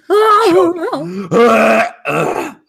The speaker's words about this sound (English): okay, God, I'm going to cough uncontrollably.